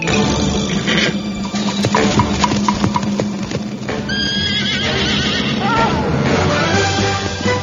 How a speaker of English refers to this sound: And here comes the horse with the giant log. Hey now. Show off.